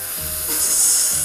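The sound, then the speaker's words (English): A can of cola is snapped open, giving a steady fizzing hiss that swells louder partway through and stays bright and airy to the end, with no voices. “With a fizzing, hissing sound, a huge cloud of vapor escapes from the can.”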